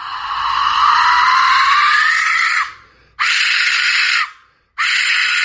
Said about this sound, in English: That's my death whistle